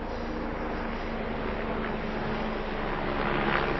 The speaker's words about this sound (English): I've got a helicopter overhead now. Oh, it's the noisiest place in the world.